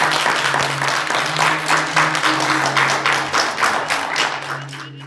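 An audience applauds steadily for about five seconds, a dense wash of many hands clapping at an even level, with a faint low hum underneath and no one speaking.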